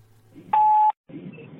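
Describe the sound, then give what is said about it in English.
A phone emits one loud, steady electronic beep as it redials, lasting under half a second, set between stretches of low background rumble and muffled noise, with no one speaking. “Well, I meant to call my wife, but my phone thought I said redial.”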